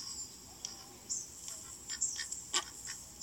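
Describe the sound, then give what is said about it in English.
A duck quacks in a quick, uneven series of short, raspy calls, fairly soft, over a steady high-pitched background hiss with no voices. “This just sounds like a quack to me.”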